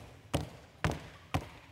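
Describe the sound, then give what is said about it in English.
Three heavy stomping footsteps, imitating the walk of a former boss at an office, land in a slow, even rhythm, each a loud, booming thud with a sharp attack and short decay. No one speaks. “That big loud stomping wasn't coming from a big person.”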